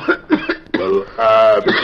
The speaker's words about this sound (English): Say, listen, kid, that coughing of yours sounds bad. What's more, it gets on everybody's nerves, and that ain't so good.